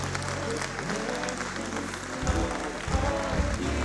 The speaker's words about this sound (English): Give the Lord a hand clap while they come. Give the Lord a hand clap while they come. Give God the glory.